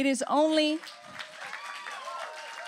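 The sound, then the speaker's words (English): A voice speaks loudly at the start, then a steady wash of audience applause follows at a Bible college gathering, with many hands clapping and faint voices mixed in. “It's going to be a lot of clapping, and we're just going to have to settle in, folks.”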